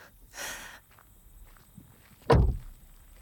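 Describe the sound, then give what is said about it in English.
A soft scuffing step followed, after a pause, by a single heavy thud of a footfall as people walk to the front door of a townhouse, with no voices and a quiet background. “I run my hand along the cool bricks as we make our way to the front door.”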